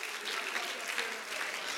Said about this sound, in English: Oh, can you clap your hands to the Lord again? Oh, I feel the presence of God in this building. Hallelujah.